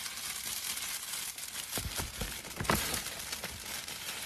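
Silver wrapping paper crinkles and rustles as a gift is wrapped, a steady papery hiss broken by sharp crackles and a few brisk tearing sounds. No one speaks.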